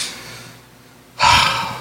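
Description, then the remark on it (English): A soft, breathy intake builds for about a second, then a single sudden, loud, hissing sneeze bursts out and trails off, with no talking. “God bless you”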